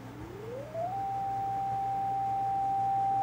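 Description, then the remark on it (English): A pure synthesized sine tone, made by eight oscillators, glides quickly upward in pitch, then settles into a steady, unwavering high hum that sustains loudly to the end, with no voices present. “So what I've set this up to be is I have 8 different oscillators that are making a sine wave sound.”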